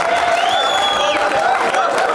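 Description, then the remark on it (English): A live audience claps steadily in a dense, continuous wash of applause after a glass of champagne is handed to a woman in the audience, with faint crowd cheers and a whistle-like tone rising above it, fairly loud throughout. “For those of you at home, the audience is clapping”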